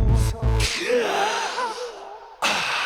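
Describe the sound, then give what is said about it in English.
A sharp, breathy vocal gasp at the start of a song, followed by a drawn-out, wavering voiced exhale, then another abrupt breathy burst near the end; fairly loud. “that song where at the beginning he goes, ah?”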